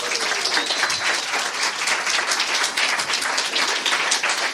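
A sustained round of applause from a crowd welcoming two former Smash Hits alumni. Many hands clap in a dense, steady wash that holds at an even, fairly loud level throughout, with no voices standing out.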